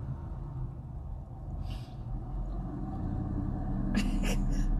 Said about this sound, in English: The way that guy drove by in that truck... Is still driving by in that truck? Like, all I want to say is, man, I wish I could be cool enough one day to just drive my truck around with one door open.